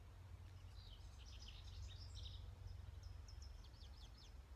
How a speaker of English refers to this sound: There's a lot of different bird sounds here.